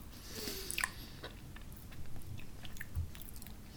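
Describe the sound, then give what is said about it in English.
Chewing of chocolate coins, with a few crisp bites early on followed by steady, soft wet mastication noises, fairly quiet and continuous with no talking. “I'm just staying quiet so we can all hear you chew.”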